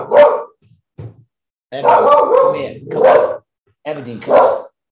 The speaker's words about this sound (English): Is this dog barking too?